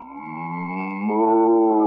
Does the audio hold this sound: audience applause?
no